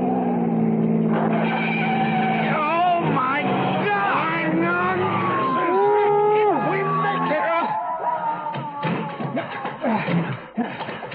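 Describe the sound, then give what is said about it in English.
A car engine roars steadily at about 98 miles an hour during a highway chase, with rising and falling whines as it accelerates and swerves to pass another car, tires squealing briefly amid the rush. “98 miles an hour. You weren't kidding about flying this heap.”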